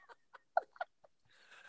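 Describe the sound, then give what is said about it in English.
A myna bird calls in a quick string of five or six varied squawks and chirps, followed by a brief hiss of background noise. “Could we talk about this fucking bird? What kind of a bird is that? It's a minor bird.”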